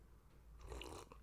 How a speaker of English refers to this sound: Quick sip of water. Don't mind me, folks.